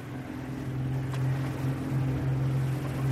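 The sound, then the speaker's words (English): A motorboat engine drones steadily at sea a few miles from shore as the driver quickly whirls the boat around, a low, rumbling hum with a strong constant pitch, joined by water wash and hiss. No one speaks. “the driver quickly whirls the boat around.”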